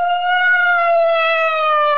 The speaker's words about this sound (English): All right, the alarm's been sounded.